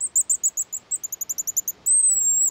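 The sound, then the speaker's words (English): A pigeon guillemot, a small seabird related to puffins, whistles over the waves along the Pacific coast: a rapid series of shrill, high whistled notes, then one long, thin sustained whistle, loud with no other sounds. “These shrill notes belong to a little seabird, the pigeon guillemot, cousin to the puffins, whistling over the waves along the Pacific coast.”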